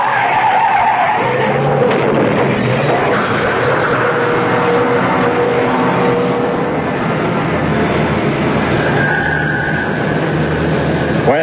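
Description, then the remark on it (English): A car with failed brakes skids loudly, tires screeching continuously over a roaring engine, the squeal wavering and sustained for several seconds, intense, with no voices. “Ed, you went right through that red light. The brakes are gone. I'm down to the floor.”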